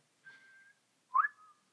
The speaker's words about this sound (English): Oh, no. Don't do it. He's trying to whistle. Ridge on the River Kwai.